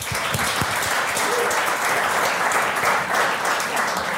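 Sustained audience applause as the audience gives itself a round of applause: a dense, steady wash of many hands clapping at an even loudness throughout, with a few sharper individual claps standing out at the start.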